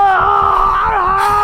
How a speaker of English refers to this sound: covering her mouth as she cried, she heard blood-curdling screams coming from downstairs.